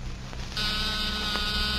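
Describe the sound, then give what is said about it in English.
After a brief low hum, a small, ordinary battery-powered door buzzer set switches on and drones steadily at full strength, a harsh continuous rasp that holds without pause until the end, with no voices. “That's nothing but a small buzzer and battery set. An ordinary door buzzer.”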